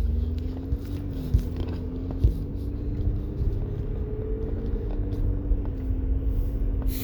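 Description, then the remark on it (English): Steady low road rumble of a car cruising along the Hempstead Turnpike, with a continuous engine drone and occasional soft thumps from the road surface, heard from inside the vehicle with no talking. “So, yeah, driving on the Hempstead Turnpike right now, this time of day, traffic on Southern States can be pretty bad, so just enjoy a little, a little bit slower”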